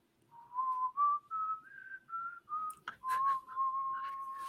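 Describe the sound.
A person whistles a short melody, several distinct notes stepping up and down before settling into a longer held tone, with a little background noise partway through.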